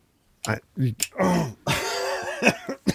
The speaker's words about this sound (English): See what popcorn does to you, folks? It makes you cough. No, I'm getting over this cold, and if I talk too much, then my throat gets that like kind of dry, and it wants to tighten up.